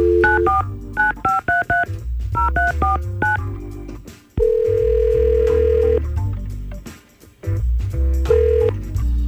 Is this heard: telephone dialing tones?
yes